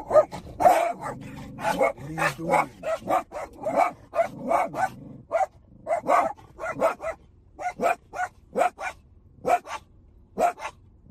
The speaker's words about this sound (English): I don't understand. We're at the dog park and they see a dog and they go crazy.